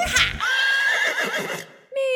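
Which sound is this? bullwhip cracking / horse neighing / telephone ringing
horse neighing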